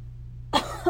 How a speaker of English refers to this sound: Makes me cough.